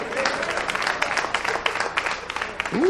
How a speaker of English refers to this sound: Ooh, listen to them claps.